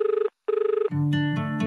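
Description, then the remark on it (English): A telephone rings twice in quick trilling bursts with a brief pause between them, loud, before music swells in underneath. “And he thought, maybe I should call that pretty woman that I met at the aquarium.”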